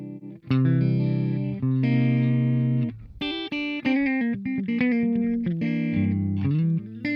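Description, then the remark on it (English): A distorted electric guitar played through a push-pull KT-88 tube amp plays sustained chords, then a run of quicker picked notes with a thick, saturated amp tone, loud, with no talking. “You can also, of course, say I want single-ended KT-88. Yeah. Or push-pull KT-88s.”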